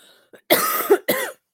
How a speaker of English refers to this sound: That little mute mic button when you cough. I'm sorry.